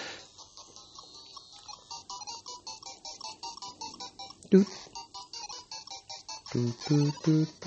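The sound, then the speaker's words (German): Bright, bleepy Game Boy game soundtrack music plays alone in a steady rhythmic pattern of short chiptune notes, with a louder, bassier melodic stretch near the end. “Einer der besten Einer der besten Nintendo-Soundtracks überhaupt, weil er sehr einfach ist und sehr schön.”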